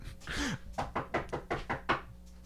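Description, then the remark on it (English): Someone raps on a door about six times in a quick, steady rhythm, the knocks fairly loud, following a brief rustling thud at the start. No one speaks. “No, I'm not knocking. Don't accuse me of that.”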